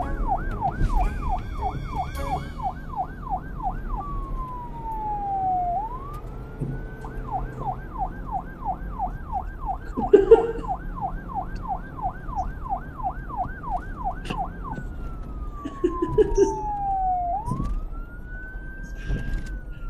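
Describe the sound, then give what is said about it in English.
A police car siren blares steadily, switching between a fast warbling yelp and slower rising-and-falling wails, over a low traffic rumble with a few brief clunks; no one speaks. “He called the police and caused a big fright. Then the coppers arrived, guns drawn and dogs barking.”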